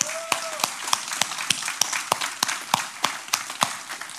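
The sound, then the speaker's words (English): An audience at Connection Church claps for its Connect Group leaders, with sharp, loud handclaps landing in a steady, even rhythm over a dense wash of scattered clapping; no one speaks. “And if you got a Connect Group leader that's awesome, how about just give them a hand clap right now?”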